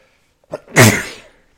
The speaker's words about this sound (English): Well, okay, now that my sneezing attack has stopped, let's see if we can get through this.